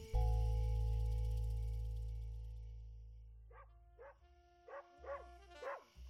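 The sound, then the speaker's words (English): A low steady hum fills the opening seconds, then a dog barks about five times in quick, sharp, high-pitched bursts, with no one talking. “I gave the waffles the grab stack, so stop barking.”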